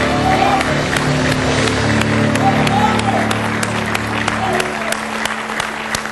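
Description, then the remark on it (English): A large audience bursts into sustained, dense applause, with crowd voices and a low steady hum mixed underneath throughout. “I think we got something to clap about.”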